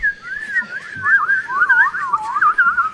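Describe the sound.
Someone whistles an imitation of soothing birdsong: a continuous, warbling line of quick trills and swoops at a steady, moderate loudness for about three seconds, with no talking.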